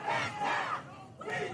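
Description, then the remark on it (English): A crowd at a street protest in Kenosha, Wisconsin, over a police shooting shouts in rough unison, voices rising in loud bursts with a brief dip in between, like a chant or battle cry from many people at once. “Wisconsin's Department of Justice is investigating a police shooting in Kenosha that triggered a street protest.”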